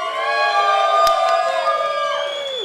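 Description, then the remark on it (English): A live audience cheers and whoops together in a loud, sustained swell of many voices that holds steady, then trails off with falling pitch near the end. “Good job playing to the crowd.”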